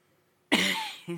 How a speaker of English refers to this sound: Figured it was going to be a cough.